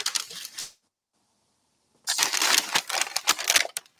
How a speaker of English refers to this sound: All right, it's a lot of crumpling over there. Yeah, I know.